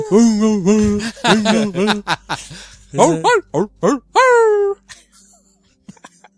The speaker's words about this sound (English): There's somebody, there's a dog singing. What is going on?